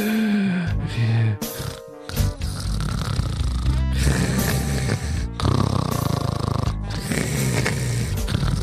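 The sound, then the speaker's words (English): Loud, rasping snores from a person dozing off at their computer at work repeat in a steady rhythm, each drawn-out breath rumbling for a second or so before a brief pause, heavy with no talking. “And you're just working away, and slowly your eyes get heavy, and your breathing slows down.”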